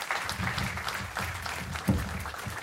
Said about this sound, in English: So warm applause for …, and we'll tell you more about it. Thank you.